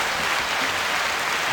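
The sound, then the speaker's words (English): An audience applauds steadily, a dense, even wash of many hands clapping at full volume for the whole stretch with no pauses and no voices. “But we got to give them applause.”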